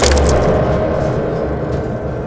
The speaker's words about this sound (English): And it's just this just sound of all the keys being hit at once and pieces going flying everywhere as you shield your face